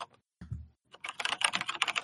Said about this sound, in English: Let's get that good typing in.